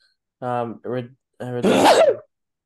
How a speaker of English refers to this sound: The fuck was that? Oh, that was me sneezing.